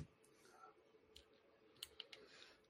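A few scattered computer keyboard clicks, quiet, with a short irregular burst of keystrokes near the end over a low, steady hum.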